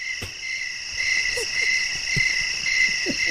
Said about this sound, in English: Like as clear as a sound of a, and I go, that's where the cricket noise came from. Was probably comedians bombing by a campfire.